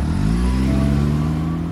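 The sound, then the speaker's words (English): A car engine runs loud, its low rumbling drone revving slightly upward in pitch over a couple of seconds, with no voices. “Ethan smiled and got into his car.”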